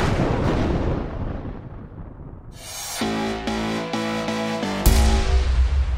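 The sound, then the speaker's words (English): A thunderstorm lightning strike: low rolling rumble, then a sudden sharp crackling crash about halfway through, with a ringing tone lingering and a second loud burst near the end. No one speaks. “I'm pretty sure it does attract lightning when it's in a thunderstorm.”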